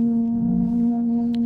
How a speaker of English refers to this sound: It's foghorn.